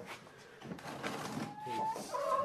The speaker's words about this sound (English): Put a cock and a hen into each crate just in case two cocks start fighting. It's not as easy as you might think, you know, loading up championship chickens.